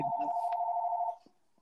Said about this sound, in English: And oh, shit. My phone is still ringing.